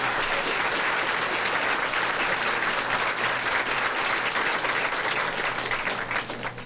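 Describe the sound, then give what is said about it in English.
Steady, loud audience applause fills the whole stretch, a dense wash of many hands clapping that holds evenly before easing off slightly at the end. “So what do you say we give her a nice round of applause?”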